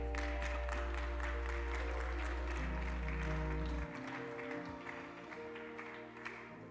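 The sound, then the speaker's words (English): An audience gives the Lord a hand clap of praise, a dense, continuous patter of many hands, with sustained low organ-like tones underneath that drop away partway through while the applause carries on. “Give the Lord a hand clap of praise as you do.”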